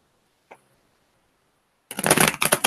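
Tarot cards being shuffled for a Taurus reading: a single soft tap, a pause, then a loud, crisp riffling burst of fluttering card noise with quick rhythmic surges. No one speaks.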